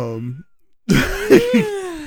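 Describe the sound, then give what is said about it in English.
A voiced yawn trails off, its tone sliding downward before fading out. After a short silence come louder raspy, throaty sounds, like someone clearing their throat or stretching. “I hate to yawn after you say such a great point, but it's late.”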